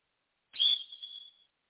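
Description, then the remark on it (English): One short, shrill blast from a coach's whistle, lasting about a second and fading out at the end, heard alone with no talking around it. “Do you want to hit the whistle?”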